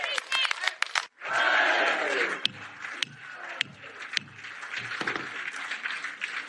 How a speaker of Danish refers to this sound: Og så begyndte alle UKIP'erne, altså de britiske EU-modstandere, at synge og råbe hurra for Nigel Farage, deres leder.